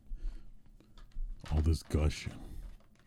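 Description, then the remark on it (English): Someone takes a drink: a few faint clicks, then two loud, throaty swallowing gulps in quick succession, with no talking. “Take a sip.”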